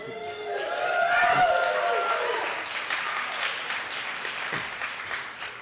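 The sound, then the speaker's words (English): An audience at a book event at the Booksmith Bookstore, for Chuck Palahniuk's San Francisco Bay Area appearance, applauds steadily with scattered cheers and whoops, the clapping dense and sustained, swelling early and then gradually thinning out over several seconds. “What a wonderful crowd tonight.”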